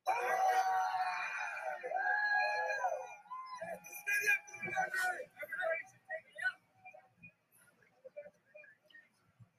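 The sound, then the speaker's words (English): A crowd of protesting veterans in Canada yells and chants slogans loudly for the first few seconds, then breaks into scattered, uneven shouts that rise and fall, with no clear words standing out. “you know, what I love about these veterans is you know, after they've, you know, yelled out their slogans and they've screamed out their thing and they've had their thing, they're picking up the garbage afterwards.”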